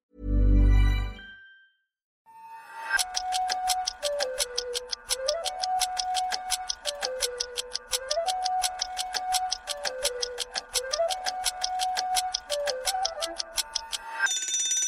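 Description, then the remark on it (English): A kitchen timer is set for 15 minutes with a quick twist and a short thud, then ticks rapidly and steadily for about ten seconds, clear, with a faint tonal whir underneath and no talking. “15 minutes on the timer,”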